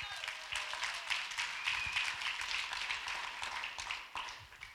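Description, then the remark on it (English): A sustained round of applause from an audience, many hands clapping in a dense, steady wash of crisp claps that holds at an even, moderate loudness for several seconds with no voices. “So I think you need to give her one more big round of applause.”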